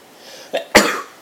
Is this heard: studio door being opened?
no